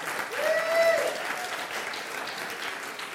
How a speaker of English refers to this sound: I recognize that applause. You are essentially saying, I'm so glad he actually made it.